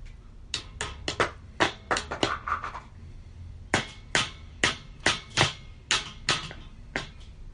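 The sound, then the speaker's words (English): A hammer taps small metal retaining caps onto a wheel to keep it on, sharp clinking strikes in quick uneven bursts with a short pause midway, ringing slightly after each hit. “Now we gotta put on these little doohickeys to keep the wheel on with the hammer.”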